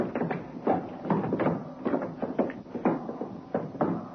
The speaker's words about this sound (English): More quickly now, the footsteps came into the main room of the club, crossed the dance floor. Suddenly, the second person broke into a run, caught up to the first.